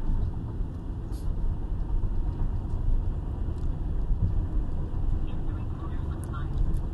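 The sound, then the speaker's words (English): Steady low-frequency rumble of road noise inside a moving car passing the Volo Auto Mall, a constant dense drone filling the background with occasional faint clicks and rattles on top. “I need the volume on the microphone actually down so you're not hearing all the car sounds.”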